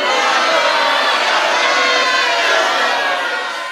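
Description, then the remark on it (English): A loud, dense live audience at a Comic-Con 2017 panel cheers and shouts continuously, a broad wash of many voices for several seconds before easing slightly at the end. “Then you add in the crowd. Right there.”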